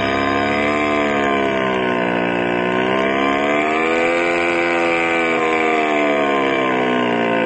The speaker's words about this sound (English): Wow, that's some engine, Gus. Yeah, you like it, Mo? It's cool, man, cool. Man, how many horses is it? 75.